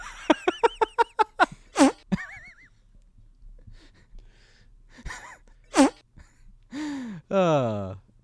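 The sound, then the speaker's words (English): A comedic fart sound effect: a quick run of sputtering pops, then sharp blasts and whiny, pitch-bending squeals with short pauses between. Loud, with no talking. “All right, let me see if I can quickly procure some other farts in within 10 seconds.”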